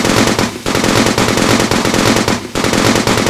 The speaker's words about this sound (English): With that, Agent Malik Smith opened fire, his Gatling roaring alongside the boiler that powered it.